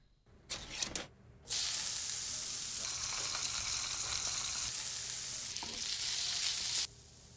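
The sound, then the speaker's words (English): A few quick clattering knocks, then Spam, Hormel's canned pork, hits a hot pan and sizzles loudly and steadily for several seconds before cutting off abruptly, with no voices present. “Don't knock it till you've fried it.”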